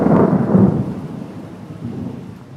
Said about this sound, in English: I think we might have a drop of rain there